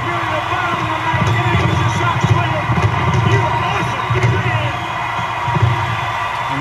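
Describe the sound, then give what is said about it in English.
A large baseball stadium crowd roars steadily for several seconds after a grand slam wins the World Series, a loud, dense wall of cheering with a deep rumbling undertone and scattered louder swells. “The crowd erupts.”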